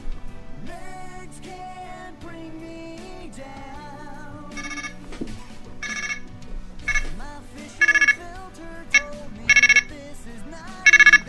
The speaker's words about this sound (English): Okay, that's my ringtone for my cell phone.